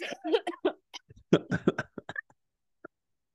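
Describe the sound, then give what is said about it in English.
A voice imitates coughing with a burst of rough, throaty hacks, then a wet hawking and throat-clearing sound that brings mucus up onto a microphone, followed by a couple of faint clicks and a brief silence. “I was mocking your coughing, and then all of a sudden, I just hawked mucus onto my microphone.”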